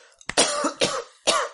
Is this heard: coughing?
yes